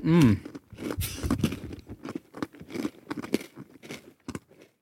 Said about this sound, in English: Dry. Eating cookies on the podcast. Yeah. They're so dry. They are very dry.